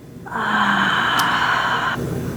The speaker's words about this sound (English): Breathing in through the nose really slowly all the way up and let it out. And that's just a really, really simple one to just take a few of.